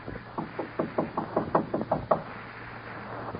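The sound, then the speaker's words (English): A rapid series of about ten knocks on the front door of a home where no one answers, fairly loud, rapping in an uneven quick rhythm for about two seconds before trailing off into quiet. “No one's home. Knock again.”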